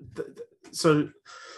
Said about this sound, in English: Apologies for the cough there.